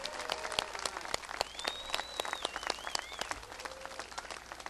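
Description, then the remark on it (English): An audience at the Festival of Lights applauds the coloring contest winners, steady, dense applause that keeps going for nearly five seconds, with a high-pitched whistle wavering above the clapping partway through and a few faint whoops. “Let's give our coloring contest winners a big round of applause.”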